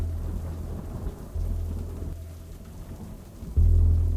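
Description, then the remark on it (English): Steady rain hisses under low, rolling thunder, then lightning strikes a building with a sudden loud, deep crack that booms near the end and keeps rumbling. “The lightning is oppressive, and it strikes the building again.”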